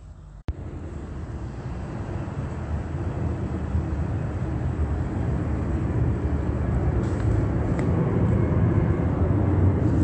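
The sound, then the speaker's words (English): A plane passes overhead at a museum in Ontario around 9 p.m., its engine roar a broad, steady rumble that swells gradually louder over about ten seconds. A brief click sounds at the start, and no one speaks. “Just want you to hear this plane.”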